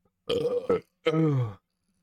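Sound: burp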